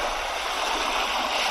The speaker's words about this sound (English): I'm out for a fish. You hear the waves? Pretty peaceful down here tonight.